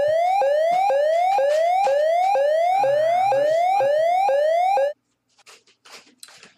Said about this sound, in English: Oh, it's the useless questions alarm. Let me just turn it off.